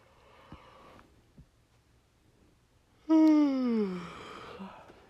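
After a few quiet seconds, one loud yawn rings out, a voiced moan that slides down in pitch and fades into a breathy tail.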